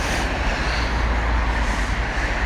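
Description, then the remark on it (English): Steady, dense roar of many cars on a road on a grey, wet day, heard while walking, a continuous rumbling wash of traffic noise with strong low-end drone and no distinct pauses or voices. “There's a lot of cars as well, so it's quite noisy.”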